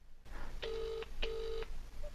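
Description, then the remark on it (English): Two steady ringback tones heard through a phone line, each lasting about 0.4 seconds with a short gap between them, a mid-pitched electronic hum over faint background noise. “It's not answering, only you.”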